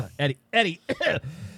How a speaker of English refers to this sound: let me clear my throat.